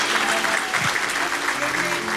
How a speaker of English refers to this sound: Denle un aplauso más fuerte al Señor. Let's give the Lord a louder round of applause.